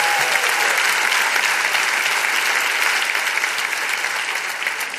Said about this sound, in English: And with him is the bride of Christ, it says. Now you can cheer. Now you can cheer.